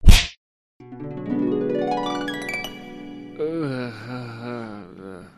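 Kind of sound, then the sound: impact, slap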